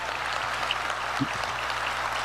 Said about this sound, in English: Clap it up for that. That's what it's about.